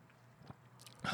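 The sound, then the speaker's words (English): A big gulp of a drink, with a few faint wet mouth sounds first and then a loud, abrupt swallow near the end. No one speaks. “That was a mighty gulp that you just took.”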